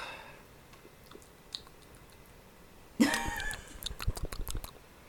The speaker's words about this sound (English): I'm finishing this. Oh, trick. I'm only halfway through. Do I need to chug it? I can finish this in one sip.